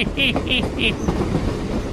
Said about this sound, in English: Yeah, the old train's coming into town